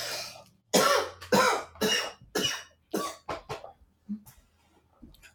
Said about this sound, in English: I can cut out the coughing in post-production, so don't worry. Thank you. I'll just note down. I'm just noting down when it happens, so I'll be able to go back and edit it out. Sorry to hear that you're sick.